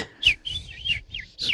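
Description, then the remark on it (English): A person whistles a soft imitation of a small quiet bird: four or five quick, high chirps and warbling tweets in quick succession, fairly quiet, with no talking. “Wait, do the little quiet bird.”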